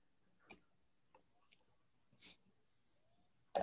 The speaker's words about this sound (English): Sorry, I just took a sip of coffee